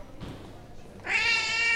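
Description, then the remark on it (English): A cat lets out a single loud, drawn-out meow, rising sharply after a moment of quiet low rumble and holding its bright, whiny tone to the end. “Damn cat. Get me into even more trouble, why don't you?”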